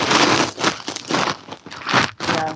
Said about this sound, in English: Oh, we got a little rustling there. That's my puppy, like, trying to chew on my... right now. Ladies and gentlemen, that was not a rustle. That is a 4-month-old puppy that cannot deal with podcasting.